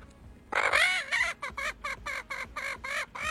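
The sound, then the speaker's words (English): A chicken clucks in a rapid series of about nine short, loud calls while being tickled under her wings, the first one longer and louder, then evenly spaced bursts with no talking. “She's about to go under her wings and tickle her. The chicken's laughing his butt off.”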